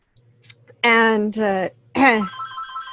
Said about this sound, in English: Hello. Hello. My phone rings.